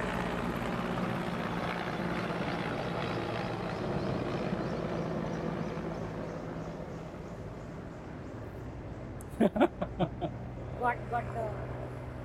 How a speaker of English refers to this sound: Finally, the chopper. That must be the PM. That must be the PM. It's 10 o'clock. Right on time.